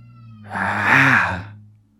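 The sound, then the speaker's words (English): A female cat named Iris lets out one hoarse, breathy scream lasting about a second, swelling then fading, over a low steady hum. No one speaks. “She's been screaming like a dinosaur all day.”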